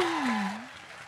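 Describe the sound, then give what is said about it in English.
A crowd claps in a steady, dense patter while a single voice lets out a sliding whoop over it, the whole burst tapering off slightly toward the end. “I feel like you deserve a you need to stand, and we need to give you a round of applause.”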